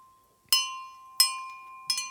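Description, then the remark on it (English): A small bell is struck three times at a steady pace, each bright, high metallic ding ringing out and fading before the next, with a faint steady tone lingering underneath. “Okay, so what makes the bell ring?”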